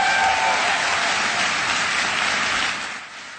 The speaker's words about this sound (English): The longest cheer for the children. This is truly a liberal audience in the White House here. Or wherever he is, American University or wherever. Oh, that was today. And the cheering goes on.